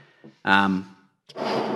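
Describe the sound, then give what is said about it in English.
Someone exhales, first with a short voiced sigh-like push, then after a brief pause a steady, breathy rush of air as they blow out into a balloon attached to their face, taking regular breaths. “You'll notice it doesn't feel like normal breathing though, right? Because you've got a balloon attached to your face.”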